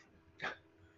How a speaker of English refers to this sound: The hounds are barking!